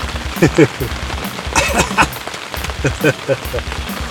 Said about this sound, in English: The pouring rain, buddy.